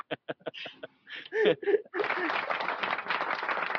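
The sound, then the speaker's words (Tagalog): A quick run of five or six sharp hand claps opens, followed by laughing voices and then a dense, sustained wash of noisy clapping and chatter. “O yan, pumalakpak na naman ako, ano ba?”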